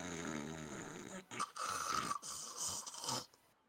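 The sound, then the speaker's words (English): A voice imitates a bartender's loud, exaggerated snoring: a long rumbling inhale followed by several rattling, snorting bursts, alone, ending abruptly. “So, you go to the top, you find the snoring bartender with a almost full bottle of whiskey. All you hear is...”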